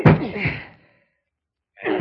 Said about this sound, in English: Open up. Oh, that shot came from Douglas' apartment. Break down the door